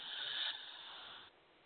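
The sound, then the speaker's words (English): A single long, airy deep breath drawn in over about a second, a soft steady hiss that swells briefly and then trails off, quiet, with no talking. “Okay, so we're going to take a deep breath together.”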